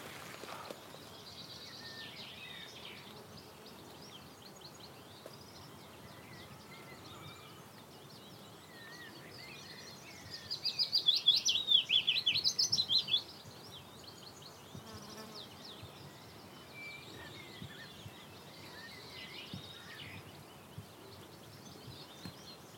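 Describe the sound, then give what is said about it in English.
A willow warbler sings overhead in scrubby willow habitat: one loud, high song phrase lasting a couple of seconds, set against a steady background hum of buzzing insects. No one speaks. “Well, that willow warbler's really loud now. You can hear it singing right above our heads.”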